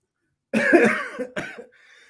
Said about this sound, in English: Are you coughing now? Just thinking about it.